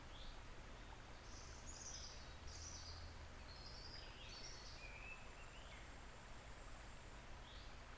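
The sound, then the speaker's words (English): Soft birdsong in a garden, a series of brief chirps and warbles scattered over a steady outdoor hiss, with no voices present. “Just the sound of the birds.”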